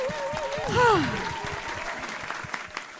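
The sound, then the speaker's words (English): An audience claps steadily for a few seconds after a music performance, a dense patter of many hands, while someone lets out a rising, whooping cheer near the start. “Can we have another round of applause?”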